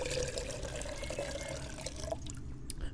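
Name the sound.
water being poured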